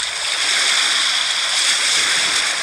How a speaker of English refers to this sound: Beach waves crashing.